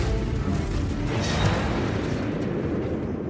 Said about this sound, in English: Moments later, a violent explosion tears through the center of campus. It looked like a mushroom cloud, like a nuclear bomb had just gone off. The worst of the damage is to a six-story research building known as Sterling Hall.